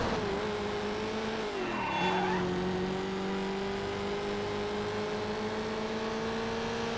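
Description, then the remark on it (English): A video game race car engine drones loudly and steadily, dipping as it shifts gears with a brief tire squeal before climbing back to a sustained high rev, alone without talking. “Dude, that engine is hurting.”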